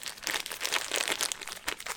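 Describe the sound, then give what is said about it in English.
A strawberry is squished inside a plastic bag as part of a basic at-home DIY biology protocol, making continuous crinkling and crackling with irregular bursts of bright, papery rustle and faint wet squelches. No one speaks. “One strawberry. Let's squish it.”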